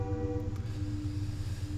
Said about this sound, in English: Wow. That train is loud as shit.